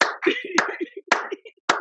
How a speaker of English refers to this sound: I'm clapping right now, guys. If anyone knows what I mean, I'm clapping right now. Respect to that.